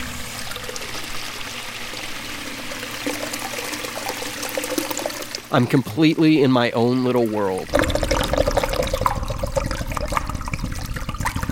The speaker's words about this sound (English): Now I'm in the public bathroom, I have my headphones on, a microphone with a big furry over it pointed just a few inches from the opening of the urinal, and I'm flushing it over and over again.